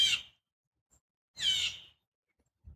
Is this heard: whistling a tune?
no